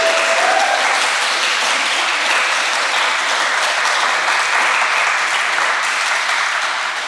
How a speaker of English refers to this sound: If we can all give them another round of applause.